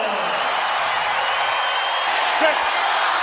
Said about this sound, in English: 6, 5, 4. Listen to this tremendous crowd counting down here. There goes the buzzer!